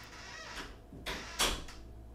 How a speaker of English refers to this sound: That was the slowest door shut I've ever heard in my life, but it is what it is.